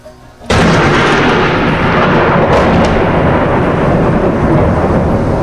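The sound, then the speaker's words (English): A sudden, deafening crack of close thunder from lightning striking a grass field right in front of the speaker, by the Maas river in a heavy, windless storm, bursts in and rolls on as a loud, broad rumble for several seconds, with no voices. “This one was, again, right in front of me, into the grass field.”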